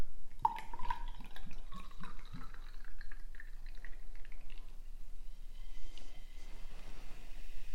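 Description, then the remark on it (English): Sparkling wine from a bottle opened the night before is poured into a flute glass, glugging in quick bursts with a rising fill pitch, then settling into a soft, steady fizz as the pour slows. “Ah, you can hear there's still a little bit of life left in that.”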